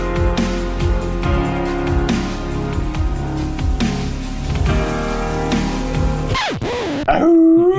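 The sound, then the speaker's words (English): Loud dog-like howls and whimpers in a wolf-man style, with a dense, droning layer of sound that gives way near the end to long, wavering pitch-sliding howls. “Is that you trying to do a wolf man?”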